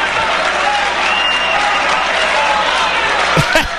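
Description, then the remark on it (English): A large crowd roars with sustained booing at a comment by Trump, a dense, steady wash of voices that holds at a loud level for the whole stretch, with a few sharper bursts near the end. “That's how much booing there was going on.”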